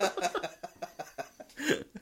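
Someone laughs hard in rapid, breathy bursts that break into a few short coughs, with a louder wheezing gasp near the end and without clear words.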